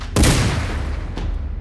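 A loud gunshot as Clyde fires at a deputy at a front door bursts out and rings off in a long, rumbling tail, followed about a second later by a much fainter second sharp crack.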